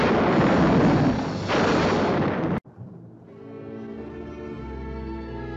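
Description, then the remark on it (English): A lightning strike sound effect: a loud, roaring, crackling crash fills the first two and a half seconds, then cuts off abruptly, leaving quieter sustained musical tones. “I'll kill the wabbit! Strike lightning!”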